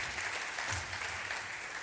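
Steady applause from an audience, many hands clapping in a dense, even patter at moderate loudness, with no one speaking over it.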